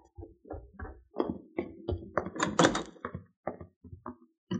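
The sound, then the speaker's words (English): A back door opens and shuts as someone comes in after putting the cow in the barn, with a run of knocks, rattles and thumps from the latch and frame building to a louder bang near the middle. No one speaks. “I put the cow in the barn and came in through the back door.”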